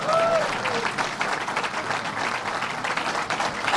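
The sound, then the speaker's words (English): A crowd applauds steadily for the announcement of a $1 billion investment, dense clapping filling the whole stretch at a fairly loud, even level, with a brief whistle-like tone at the very start. “But to me, give $1 billion a round of applause.”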